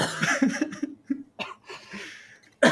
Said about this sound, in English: you legit almost killed me because I almost choked on my cough drop. You weren't ready for that one.